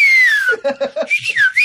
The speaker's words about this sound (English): I'll be there blowing the whistle.